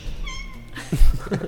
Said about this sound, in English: Pass me my gun. My gun makes a cat sound. Wait, ready?